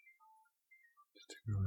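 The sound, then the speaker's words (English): A faint mobile phone ringtone plays a short run of thin, melodic electronic tones somewhere in the background, then a voice begins speaking over the end. “I mean, my phone's going off in the background.”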